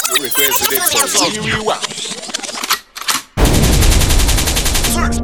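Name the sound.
gunshot sound effect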